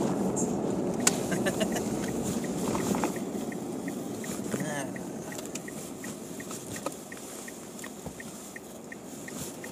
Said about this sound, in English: It's a fair bit of traffic on this road. Yeah. I'll wait for this sprint to go past.